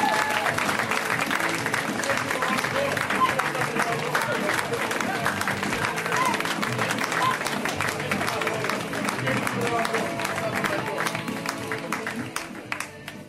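Sustained audience applause for a stand-up comedian being introduced, a dense steady wash of many hands clapping at fairly even loudness for about thirteen seconds, with some crowd noise mixed in and tapering slightly at the end.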